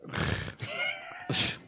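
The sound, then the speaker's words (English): A person imitates a snore with a loud, rough rasping breath, then a gurgling voiced drone, and ends on a sharp hissing exhale. There are no words. “I don't think the audience members have heard me snore before.”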